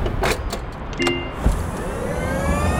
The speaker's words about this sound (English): As we dart through the streets of Nairobi on an electric motorbike. This here is Kasi, the Swahili word for speed.